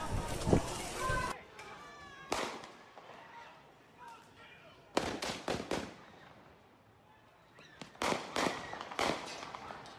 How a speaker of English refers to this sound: So, allegedly, there's gunshots over here, and you can see the gunman.